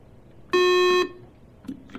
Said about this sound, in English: And can we make sure the buzzers are going to work?